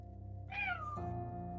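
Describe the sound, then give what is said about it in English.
A single cat meow from the Minor Illusion spell in Baldur's Gate 3, drawn out and sliding downward in pitch. It sounds clearly over a steady low background drone that continues after it ends. “This is the cat going.”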